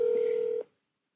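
A single steady electronic telephone tone sounds clearly for just over half a second as a phone call is being placed, then cuts off into silence. No one speaks.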